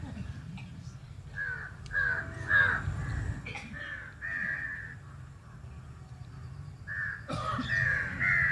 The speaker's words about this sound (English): I'm sorry, those crows are a bit noisy. They must have their evening too.